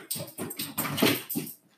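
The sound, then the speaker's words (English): A dog whimpers in a quick series of short, whiny bursts, five or so strung together over a couple of seconds, with no one talking. “The dog just ran in.”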